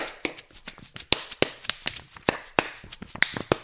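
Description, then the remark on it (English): Rapid, irregular plastic crinkling and crackling from a water bottle being squeezed, with sharp bright clicks scattered over about four seconds and no voices. “I'm playing this water bottle, and I bet you're wondering how well you annoyingly squeeze it and make crinkle noises, and then you do a rap.”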